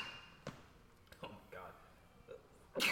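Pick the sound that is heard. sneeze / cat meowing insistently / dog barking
sneeze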